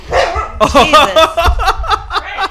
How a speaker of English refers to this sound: started barking at him.